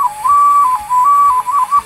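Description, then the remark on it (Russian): A clay toy whistle blown in a short, bright melody, its clear tone stepping between a few sustained notes with brief breaks, with no talking. “Все свистят, и они по-разному играют.”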